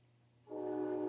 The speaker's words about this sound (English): I got this window closed and the damn train is still loud.